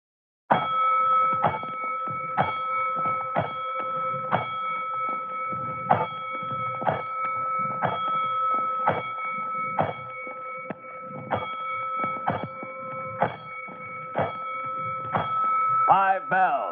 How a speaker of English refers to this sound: By all stations. Attention, all districts, a 5-alarm fire. 5 bells, move in immediately.